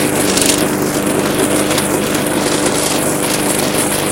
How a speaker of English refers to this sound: Mowing away here. Back and forth now. I'm considering going around in the square. But I might just go up and down all the way across.